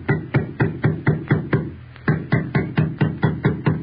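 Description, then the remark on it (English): Two carpenters hammer nails into the three-plank lid of a wooden packing case with Harry Houdini inside, in a quick, steady run of sharp knocking blows, a brief pause, then the same brisk rhythm again. No voices are heard. “Two burly carpenters step forward, place the three plank lid in place, and nail the lid down.”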